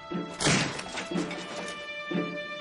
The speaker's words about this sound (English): They shook the door and called to him, and beat with their fists upon the wooden panels. No sound came from the room. Becoming alarmed, they decided to burst open the door.